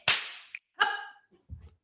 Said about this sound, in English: I'm just gonna get him to come up. He's not gonna stop barking.